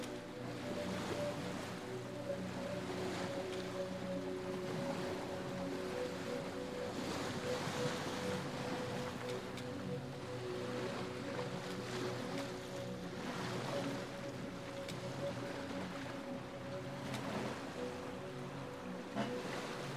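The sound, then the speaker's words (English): Steady wash of water lapping and surging against the shore of a protective cove where several brightly painted fishing boats are moored, with a constant low hum like a boat motor and some wind noise, continuous, no voices. “A steep stone stairway, carved out of the rocks, descends to a protective cove where several brightly painted fishing boats are moored.”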